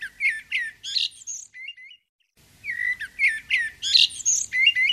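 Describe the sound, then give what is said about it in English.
A European goldfinch sings a bright, rapid twittering song of tinkling notes and trills, clear, in two lively bursts separated by a brief pause. “And thus, it is the European goldfinch that could be considered the Christmas bird.”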